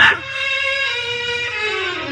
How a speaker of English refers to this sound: Toto must have jumped out of her basket and run back home because there's a little brown and white dog looking all over for you. Oh, Toto. Toto, you're back.